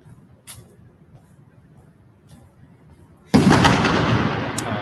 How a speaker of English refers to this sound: But we're kind of coming down up on the corner of the FBI headquarters where these explosions are going off. And it is loud.